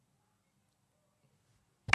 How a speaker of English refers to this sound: How did you do two slaps and a clap?